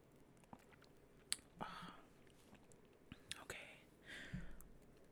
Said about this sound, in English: Let's take one sip for couch chat.